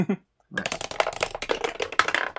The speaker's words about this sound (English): I got actually, let's be spicy. Roll me a d12 instead.